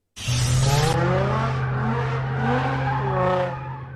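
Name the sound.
cars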